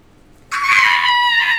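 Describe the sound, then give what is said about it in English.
A sudden, piercing scream of torture bursts in after a brief quiet moment and holds steady, shrill and strained, loud until the end. “lots of torture screams.”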